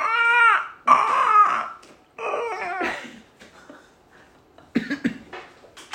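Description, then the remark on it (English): A voice imitates a penguin's screech with several loud, strained, wavering cries, then a brief lull and a couple of rougher, breathy bursts near the end. “It's like that, but a little bit more of a screech.”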